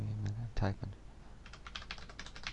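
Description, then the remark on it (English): Rapid clicks of fingers on a computer keyboard as someone types a password to log in, a quick burst of keystrokes after a brief low hum and a soft thump at the start, moderately loud. “Don't try to determine the number of characters in the password by how long I'm typing.”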